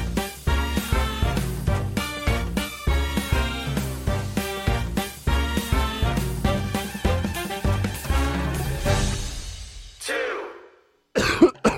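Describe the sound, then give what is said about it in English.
A person coughs over and over in a long, harsh, hacking fit, with rapid bursts and brief gasping breaths between them. A short pause follows before the coughing starts up again. “Have you had a persistent cough for the last few weeks?”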